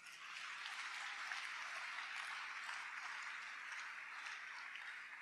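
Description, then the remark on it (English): A church audience claps for the Lord together in a dense, continuous burst of applause, a steady crackling wash that holds an even level for about five seconds with no voices over it. “Can we clap for the Lord?”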